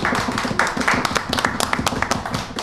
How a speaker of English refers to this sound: Everybody got to do the live claps, the live in studio claps today.